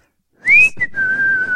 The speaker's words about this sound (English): Yes, it was like a very, you know, chill whistle.